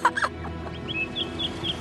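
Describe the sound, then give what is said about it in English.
An ostrich clucks, a few short, spaced-out clucking calls over a couple of seconds, moderately loud against a low, steady background hum with no one talking. “But one of the ostriches was bothering James. Stop pecking my paintwork, you oversized chicken!”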